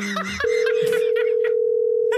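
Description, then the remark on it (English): A steady, unbroken telephone dial tone hums loudly for about two seconds as a caller tries calling again, following a brief burst of indistinct voices and a short chuckle at the start. “Answer the phone.”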